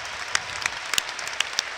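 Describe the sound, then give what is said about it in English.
A crowd applauds the crew steadily, a dense wash of clapping with a few sharper individual claps standing out, with no voices. “Well done, crew. We'll clap Clayton Donaldson because he's from Bradford.”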